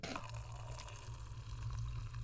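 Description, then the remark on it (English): Box wine, a Cabernet Sauvignon from California, pours from the box into a glass in a steady stream, a continuous gurgling trickle with a low hollow resonance that holds evenly for a couple of seconds, with no voices. “It is box wine. It is called Botterbox. It's a Cabernet Sauvignon from California.”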